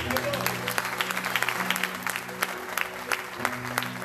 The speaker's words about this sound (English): Hallelujah. Give him a hand of a clap.